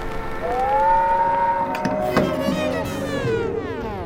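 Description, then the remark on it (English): A voice imitates an old train whistle heard about a quarter mile down the track, holding one long, moaning tone that slides up, sustains, then slowly sags in pitch over about four seconds, with no talking. “I got down there just in time to hear the old whistle about a quarter mile down the track. Something like this.”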